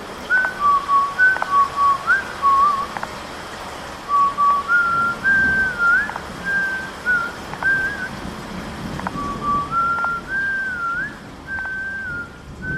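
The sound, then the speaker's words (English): A person whistles a song, a clear, steady melody of sustained notes that step up and down in pitch, carrying on for several seconds over a constant noisy background hum. “But there was whistling, and he was whistling the song that had just been on the radio.”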